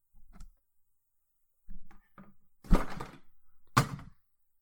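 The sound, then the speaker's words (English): A few soft low thumps, then two sharp, loud knocks with a crackly rattle as a pop filter is smashed against a microphone during a recording. No one speaks. “I just smashed my pop blocker right in the middle of this recording.”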